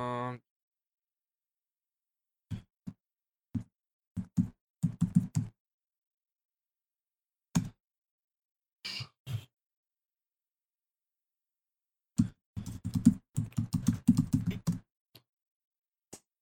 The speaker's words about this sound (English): She is looking for the tweet. Apologies for the tapping on my keyboard. I am talking because she is looking for the tweet.